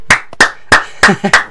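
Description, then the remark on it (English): A few people clap their hands in applause for a piece of gum, about six sharp, bright claps in an uneven rhythm, with a brief voiced sound mixed in near the end. “We're applauding for gum.”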